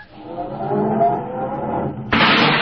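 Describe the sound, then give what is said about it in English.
A car engine starts and runs with a steady, droning rumble, then surges into a sudden louder roar near the end as the car is backed into a parking space. No one speaks. “start it up, Andy, and back it over there in space number 7”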